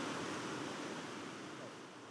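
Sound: rushing river water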